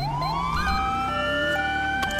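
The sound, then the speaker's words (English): A police car siren wails steadily and loudly as the car responds code 3, its rising tone holding high over a low rumble of engine and road noise, with no talking. “Show me code 3.”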